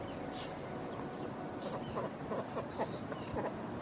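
Faint, scattered bird calls, short repeated chirps, rising over a steady blustery background of wind and ambient outdoor noise at an old whaling station.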